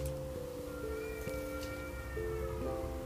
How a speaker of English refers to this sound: I reckon there was five cats then along our back fence making a racket, and two of them were massive. There you go, you can hear those cats now. Perfect.